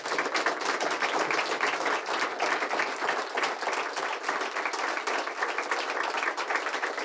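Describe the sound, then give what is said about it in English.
A crowd applauds steadily for several seconds, a dense, even wash of many hands clapping at once with no voices standing out. “Well, could we give them a huge round of applause?”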